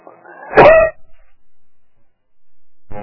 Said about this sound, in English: I'm driving the sound guys mad back there. Maybe I ought to flip that button off when I cough.